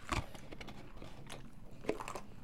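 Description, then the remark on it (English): Loud chewing of pita bread with wet, crunchy bites in an irregular rhythm, a few sharper bites standing out over continuous mastication noise. No one speaks. “Hey, I'm chewing very loudly.”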